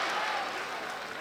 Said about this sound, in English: Oh, you can hear this crowd. It has been, like me, anxious all night long.